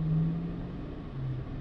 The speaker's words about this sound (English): Was somebody honking at me? I don't know. All of a sudden I heard a big rig honk.